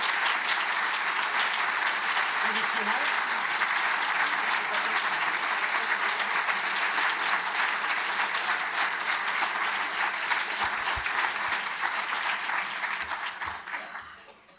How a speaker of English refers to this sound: Actually, this is two firsts. First, they started clapping when you came in, and second, they started clapping just before you finished.